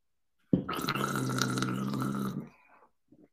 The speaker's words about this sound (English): Did you hear that? It's not a very good gargle. I'm not very impressed with myself. I thought I could gargle a little better. That was a lot of water too. That is gargling.